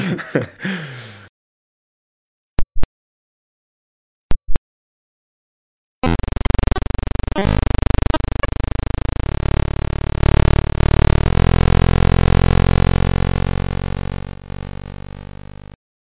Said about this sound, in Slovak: Dobre, tak ešte raz si pustíme teda zvuk. Je to... Radarová ozvena na Titáne. Wow, to znie jak super band.